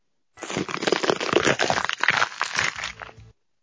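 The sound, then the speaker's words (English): A green pepper is torn apart, a continuous wet crunching and crackling with irregular snaps and rips lasting about three seconds, with no voices. “Sound of a green pepper being torn apart.”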